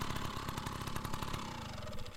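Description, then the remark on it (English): A small two-stroke PW minibike engine running on premix and giving off hazy blue smoke buzzes loudly, its rapid, raspy firing pulses steady before the pitch shifts slightly as it revs. No voices are heard. “Ah, the familiar smell of premix and the sight of hazy blue smoke.”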